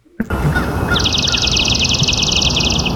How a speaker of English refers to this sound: No, in this case, this was swamp sparrow. Swamp sparrow. You see, yeah. This is why they're complicated. Yeah. It's very staccato, this one, and it was in a marshy area.